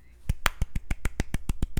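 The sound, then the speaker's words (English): A quick, steady run of about eleven sharp hand claps, evenly spaced and fairly loud, each one crisp and percussive, with no talking over them. “It's my clap. It's needed.”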